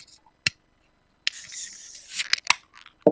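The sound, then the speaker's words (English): A can of Deschutes Chasing Freshies beer being opened: a sharp metallic click, then about a second of loud fizzing hiss as the gas escapes, followed by a few more crisp clicks and taps. No voices. “I'll open it on my end. You open it on yours.”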